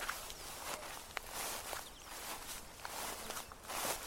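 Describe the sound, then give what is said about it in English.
Steady footsteps at an even walking pace around a car, each step a soft, gritty scuff, fairly quiet, with a faint hiss of background noise and no one talking. “I went around to the other side.”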